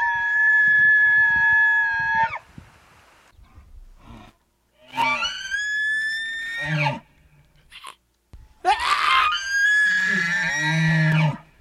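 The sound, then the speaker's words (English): A person imitates a bull elk's scream with three loud, high-pitched, strained whistling calls, each lasting a couple of seconds and separated by short pauses, with no talking. “When they scream, it's the bulls. They're screaming to let the cows know what's up and to let the other bulls know to step the fuck back.”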